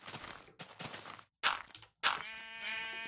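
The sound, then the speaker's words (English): Sheep bleat several times in quick succession, loud, the final call a long wavering bleat with a strongly harmonic, quavering tone. “Well, speaking of sheep, let's count some sheep.”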